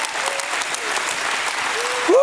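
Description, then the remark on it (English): A church audience, standing, claps hands in a dense, steady burst of applause as a hand clap of praise to God, with scattered vocal cheers and a rising whoop near the end. “Somebody stand and give God a hand clap of praise for his presence.”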